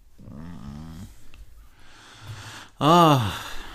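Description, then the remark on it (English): Heavy, raspy breathing into the microphone: a long voiced exhale, quieter huffing, then a loud, sharp gasping breath near the end, distorted. “All that breathing is coming hardcore in that mic.”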